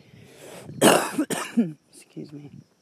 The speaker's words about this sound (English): Excuse me, that must have been loud. Try not to cough into the microphone. Try not to cough at all, actually. When smoking, very difficult thing to do.